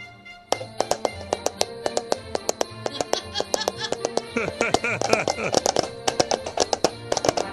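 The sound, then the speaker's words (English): Paper cups clop in a quick, steady gallop like horse hooves, a long run of sharp hollow knocks, with a brief burst of voice partway through. “You too can do this with your own paper cups.”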